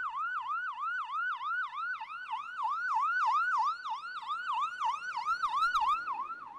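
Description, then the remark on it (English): An ambulance siren wails in fast, repeating rise-and-fall sweeps, steady and loud throughout, with faint road noise underneath and no voices. “Six people physically forced her onto an ambulance and was forcibly restrained during the ambulance ride and 4 days in the hospital.”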